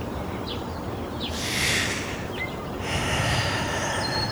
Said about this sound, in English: So is breathing really loudly.